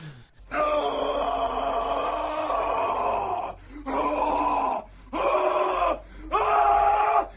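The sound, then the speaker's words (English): A man lets out a long, anguished horror scream, Nicolas Cage's scream from the film Mandy, followed by three shorter agonized wails, each loud with brief breaths of silence between them. “And if I really, really didn't like it, I give it a seasonal appropriate, a Nick Cage from Mandy horror scream.”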